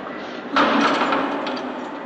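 A door is shut and locked with one sudden heavy clank, followed by a bright metallic ringing that slowly fades over the next second and a half. No one speaks.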